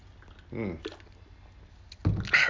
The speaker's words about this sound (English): Well, I got to take a sip of this cerveza, a.k.a. beer for all you non-Spanish speakers.